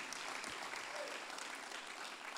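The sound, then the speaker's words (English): An audience claps together in a steady, dense wash of applause, loud and sustained throughout with no voices standing out. “Come on, clap together if you're thankful that God designed you.”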